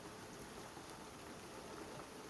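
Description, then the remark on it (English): A steady, soft hiss of rain falling outside, heard from indoors, continuous and even with no distinct drops standing out, fairly quiet, with no voices. “I have to admit, there's something so peaceful about being inside while it's raining.”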